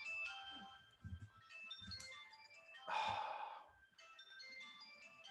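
A phone ringtone plays a bright, repeating electronic melody of tonal notes, steady, with a brief breathy rustle in the middle before the tune resumes.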